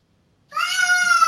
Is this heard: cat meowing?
yes